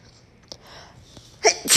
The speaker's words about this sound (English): Like, oh, I gotta sneeze. Hold on, I just took my peppermint oil. I'm getting a headache. Hold on. Uh-oh, it's coming, y'all. It's coming.